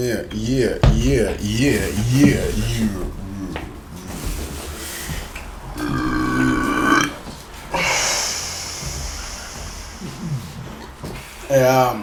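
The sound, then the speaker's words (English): Loud burping from a person drinking beer: a few long, gurgling belches in a row, some stretched out and rumbling, mixed with brief voiced sounds between them. “Hey, I burp a lot with beer, man.”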